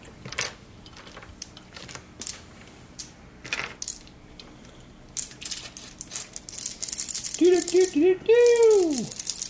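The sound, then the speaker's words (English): Dice clatter and tumble across a hard tabletop in a string of sharp clicks and rattles, rolled for a perception check in a tabletop role-playing game, followed by a person starting to speak at the end. “Roll those dice, motherfucker.”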